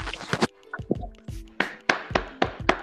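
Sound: hand clapping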